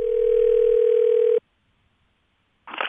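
A loud, steady telephone dial tone hums for over a second, cuts off abruptly into silence, and then a brief burst of sound arrives near the end, as the hosts of the radio show Sound Opinions call a listener back.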